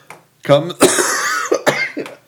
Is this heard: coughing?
yes